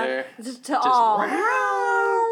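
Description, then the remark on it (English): A cat named Annabelle meows, a few short chirpy calls followed by a long, drawn-out, wavering meow that rises and then holds steady, loud and clear. “We got kitties wanting to chime into the conversation.”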